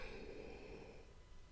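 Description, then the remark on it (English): A single drawn-out yawn, a breathy, slightly voiced exhale that holds steady and then slowly trails off, with no talking. “Oh, kids are making me yawn.”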